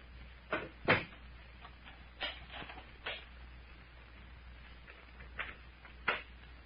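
A series of sharp wooden clunks and latch clicks as two doors are shut and locked, coming at irregular intervals over a low steady hum, with no voices.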